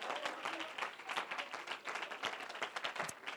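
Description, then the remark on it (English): A crowd applauds together as a hand clap of praise to God, a dense, sustained patter of many hands clapping at once, fairly loud and steady throughout, with a faint murmur of voices mixed in. “Why don't you give him one more great hand clap of praise tonight?”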